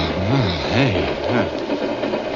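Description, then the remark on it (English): A moving freight car rumbles and rattles steadily, while a low, wavering whine rises and falls three times before fading into the continuous clatter. No one speaks. “Hey, this thing's moving. Sure, friend. It's okay. You're in a freight car.”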